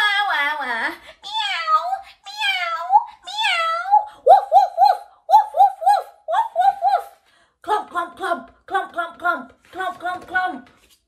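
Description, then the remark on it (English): Several voices mimic squawking birds, starting with a few high swooping cries, then loud short harsh calls repeated in quick groups of three. “They fluttered and squawking into the air. Squawk, squawk, squawk. Oh dear, join in with that one.”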